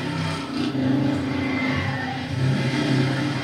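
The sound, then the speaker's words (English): A car engine revs up and down in steady pulses, its low rumbling growl rising and falling twice over a few seconds, loud with no voices. “God, such a beautiful car.”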